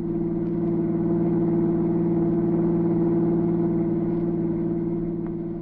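A chauffeur-driven car's engine hums steadily on the road to the northern border, a low, even drone with strong bass tones that holds at a constant loud level throughout, with no voices.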